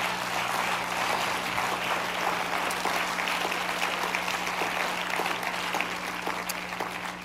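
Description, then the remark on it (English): An audience claps hands to the Lord in a steady, dense wash of applause lasting several seconds, with sharp individual claps standing out over a low constant hum. “Clap your hands to the Lord if you believe it.”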